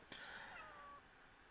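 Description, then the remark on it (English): A single drawn-out meow from a female cat, rising sharply then sliding down in pitch over about a second, fairly soft with no talking. “You silly cat. She's gonna be trapped in there.”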